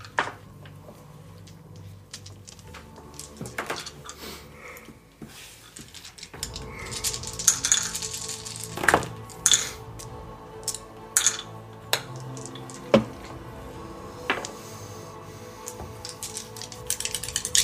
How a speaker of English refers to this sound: All these freaking die. Oh, that's nothing. That's half the die.